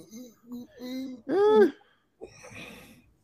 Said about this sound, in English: You were there yawning.